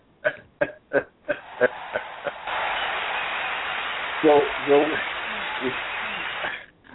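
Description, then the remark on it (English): A speaker claps in place of a sound effect: a quick run of about six sharp hand claps that gradually slow and soften, followed by a steady hiss with a few brief voice sounds. “I don't have sound effects over here, but if I did, I'd give you one. So I'm just going to clap.”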